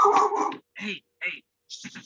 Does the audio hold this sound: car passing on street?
no